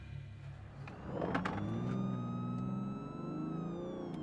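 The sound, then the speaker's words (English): A car engine rumbles and revs up as the vehicle pulls out of a lighthouse driveway, while a steady, rising siren tone wails over it, fairly loud, with no one speaking. “He pulled out of the lighthouse drive and turned on the siren.”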